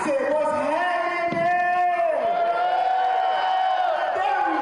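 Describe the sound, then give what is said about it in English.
A big, happy audience cheers loudly and steadily as a performer from Georgia comes out dancing on stage with a live band and hypes the crowd, with high, drawn-out whoops and shouts rising and falling over a constant roar of voices for the whole stretch. “This big happy audience.”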